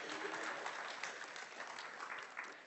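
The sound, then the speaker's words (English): An audience breaks into steady applause for volunteers, a dense wash of many hands clapping at a fairly even level for a few seconds with no voices standing out. “Round of applause for my volunteers, please.”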